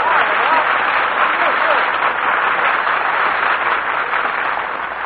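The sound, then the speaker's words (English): Sustained audience applause greeting Dennis's entrance as he returns, a dense, steady wash of many hands clapping at an even loudness throughout, with no voices standing out above it. “Gee, was all that applause for me?”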